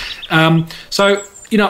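Bird sounds played from Will's website: three short, harsh bird calls in a quick, uneven series, each a buzzy nasal note that stops abruptly, loud, with brief silence between them and no talking.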